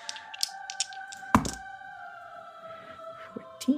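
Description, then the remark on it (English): A few light clicks and taps followed by a solid thunk as two dice are rolled, clattering and landing on a hard tabletop, over a steady low background hum. “Well, let's go two dice.”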